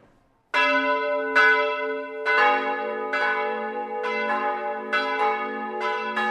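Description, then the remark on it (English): An Angelus church bell rings out in steady, evenly spaced strokes, each one loud and clear with a long ringing tail that overlaps the next, no voices present. “When the Angelus bell rang at school, I was supposed to kneel and pray to God”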